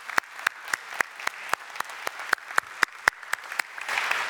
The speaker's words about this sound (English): This profile and provision amazes us and is truly God. So thank you, and we give God the glory. Give him a little clap here.